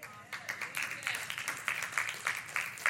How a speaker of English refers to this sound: Only the women are clapping.